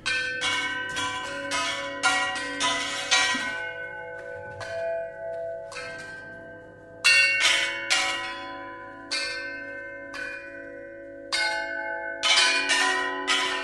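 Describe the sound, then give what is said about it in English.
An elephant strikes a metal gong made from a circular saw confiscated from an illegal logging operation, again and again in quick, irregular bursts, its bright, bell-like tones ringing and overlapping, with short pauses between clusters of hits. “Some of the instruments in this unique orchestra were custom-made for the elephants, including a gong fashioned from a circular saw that had been confiscated from an illegal logging operation.”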